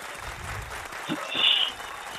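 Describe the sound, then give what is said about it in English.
A short burst of audience applause welcoming guest Joe Madison onto a show, a dense crackle of many hands clapping at once that swells briefly near the middle before easing back to a steady patter. “I was figuring you were waiting for your full applause for it to all end.”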